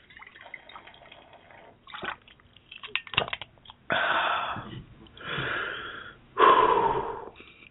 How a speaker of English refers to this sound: Let me just get a drink of water, guys. I just need to be able to catch my breath here.